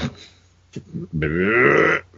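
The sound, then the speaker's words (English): A loud belch: a couple of short throaty grunts, then one long, rasping, drawn-out burp lasting nearly a second before cutting off, with no talking around it. “Yeah, so these cat people, I guess, belch on them.”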